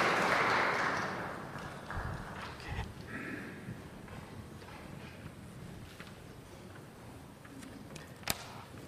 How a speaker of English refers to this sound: Thank you also, of course, speaker number three. Round of applause again for all three speakers, please.